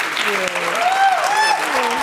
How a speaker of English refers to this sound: Thank you. Let's give another round of applause for our panelists,